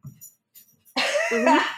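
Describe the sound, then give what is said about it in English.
After a moment of near silence with faint low rustling, a single loud, raspy cough bursts out from a person who is still stuffy after being sick, lasting nearly a second. “So I'm probably, there's going to be some coughing.”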